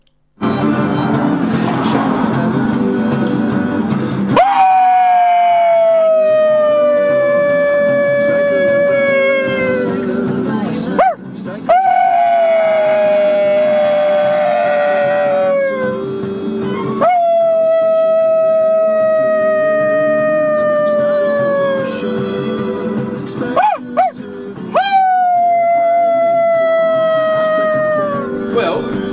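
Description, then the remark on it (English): A person howls while driving on the A358 approaching Thorn Falcon on the evening of 21 April, in a loud, sustained, wavering tone that seems split into two voices at once, with about four long, slowly falling howls over a steady low rumble like road noise. “Somehow you managed to howl two voices. Howl in stereo.”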